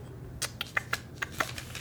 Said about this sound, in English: Do you hear that? She's actually thumbing through an actual paper, physical Bible.